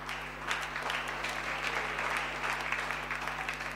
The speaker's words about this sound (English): Yes, we can give a clap offering.